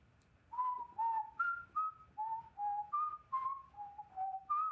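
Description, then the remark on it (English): A faint whistled tune of about ten held notes, each sliding slightly as it wavers up and down in pitch, carried over a soft low rumble with no voices. “Whistler. The Whistler. Where are they coming from?”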